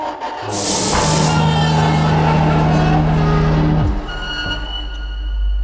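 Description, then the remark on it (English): A sharp hiss of escaping air bursts out, then a steady low mechanical hum drones for a few seconds before dropping off abruptly, as a jammed airlock door on a ship grinds open using the manual release. “Airlock is jammed.”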